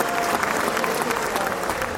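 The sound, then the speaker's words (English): Steady applause from a crowd fills the whole stretch, a dense wash of many hands clapping at a fairly even level with no voices standing out. “Do you think that's worthy of a... Your applause and your big...”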